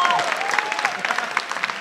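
audience round of applause

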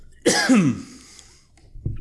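throat clearing

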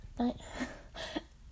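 coughing

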